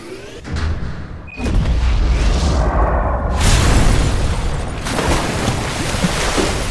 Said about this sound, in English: Are the torpedoes ready? Yes, sir. Finally. Zone E5, fire!